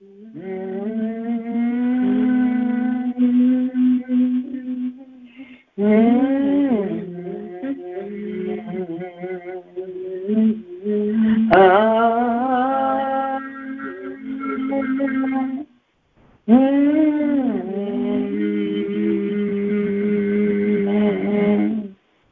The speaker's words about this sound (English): Hum. Mm-hmm. Mm-hmm. Keep humming. Hum that pain away. Mm-hmm. Hum it out.